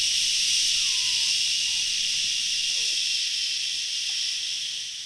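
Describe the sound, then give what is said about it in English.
A pressure cooker's steam valve, opened by hand after the cooker's beeper sounds at the end of pressure-cooking steel-cut oats for 10 minutes, releases a loud, steady hiss that fills the whole clip without pause, with faint chirps and squeaks sounding underneath. “So I'm drinking my coffee, put it in there, 10 minutes at like, I don't know, 4 something, and heard the beeper go off, and so I hit the air valve, steam valve, whatever.”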